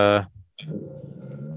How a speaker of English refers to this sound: Sorry, I'm just listening to your dog growl and your kid play with toys and bringing up my Letterboxd account. Sorry, they think they see something outside, but there's nothing out there.